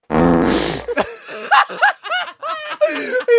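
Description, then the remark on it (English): A loud, buzzy fart lasting nearly a second, then a quick sharp sniff, followed by several people snickering and laughing. “…, please hit me with a fart and a sniff.”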